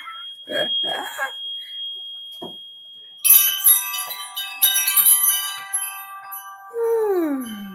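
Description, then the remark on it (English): Wind chimes in a house ring out bright after some brief murmuring, their metallic tones overlapping and lingering for several seconds before a lower tone slides downward at the end. “I have wind chimes all over my house.”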